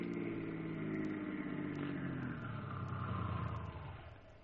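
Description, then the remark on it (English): A car engine hums steadily as the vehicle starts up and drives along, heading for the next side road off the highway, its low rumble shifting in pitch as it changes speed, then easing off toward the end. “Start up. Take the next side road off the highway.”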